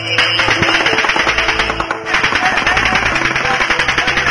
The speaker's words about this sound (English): Can you see where it's come from? No. The officers are pinned down by automatic gunfire.